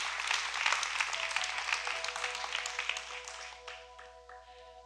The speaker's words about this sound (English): Stand on your feet. Come on, give God a big praise. Come on, give God a big hand clap.